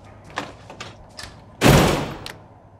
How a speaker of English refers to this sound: You want to be out there playing with all them hoes and you keep your ass out there, but stop knocking on my goddamn door.